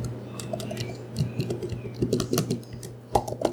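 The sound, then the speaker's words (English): Rapid, irregular clicking of laptop keys being typed on in an apartment where three people work from home, with a steady low hum underneath and a few louder key strikes near the end. “The typing of the keys play from morning till evening nonstop.”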